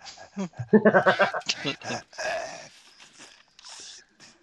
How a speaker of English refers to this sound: What's the quacking? He stepped on a duck.